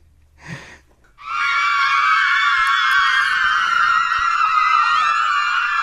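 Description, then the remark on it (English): A crowd of girls shrieks and squeals at once in sustained, high-pitched excitement like adoring fans, loud and continuous for several seconds after a brief short sound at the start. “Do we really need girls screaming after my news?”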